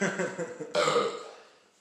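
A loud, drawn-out burp with a gravelly start that erupts into a second strong burst, then trails off in a long echoing reverberation as if in a large, hollow hall.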